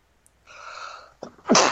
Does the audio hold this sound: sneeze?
yes